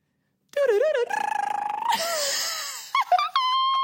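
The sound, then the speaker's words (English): A person imitates a wood thrush song with a voice, running through a series of warbling, fluting whistled phrases, some sliding and some held steady at high pitch, loud and without other talk. “Okay, so my favorite bird song is the wood thrush.”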